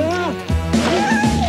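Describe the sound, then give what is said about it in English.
A cat named Jake, a house cat in the film Meet the Parents, meows: a short wavering cry followed by a longer, drawn-out meow with rising and falling pitch. “Jake's strictly a house cat.”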